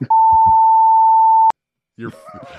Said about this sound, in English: I'm going to beep that part too. So everybody's going to be wondering what I said.